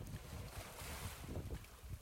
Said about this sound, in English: Listen to the sounds around you. Can you hear the waves?